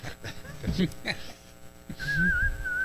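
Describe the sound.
A person whistles a thin, wavering tune, the pitch sliding and trembling over a couple of seconds, preceded by brief mumbled vocal sounds.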